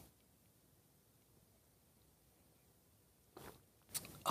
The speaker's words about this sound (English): Fill it with your favorite liquid. I like coffee. And join me now for the unparalleled pleasure, the dopamine of the day, the thing that makes everything better. It's called the simultaneous sip. It happens now. Go.